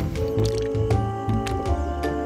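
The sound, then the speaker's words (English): Wet, squishing gulps of a drink swallowed from a can, several in quick succession with liquid sloshing, fairly loud and steady throughout with no talking. “I'm going to take a few big old gulps to get closer to that 45 minute mark.”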